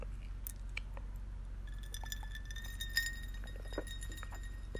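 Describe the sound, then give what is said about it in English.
Quiet sips from a glass of iced tea, with small wet slurps and the occasional light clink of ice against the glass, over a low steady background hum, no talking. “Sorry, little iced tea sip.”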